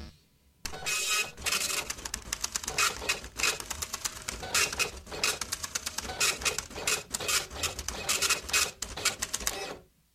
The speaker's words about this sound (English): Boom. Is that really long? Printer's getting slower, I think.